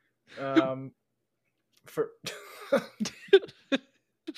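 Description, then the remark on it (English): A single short, voiced hiccup with a tonal, throaty catch rings out alone, followed after a pause by people talking. “That hiccup is staying in the pod.”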